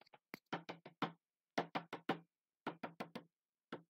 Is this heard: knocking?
yes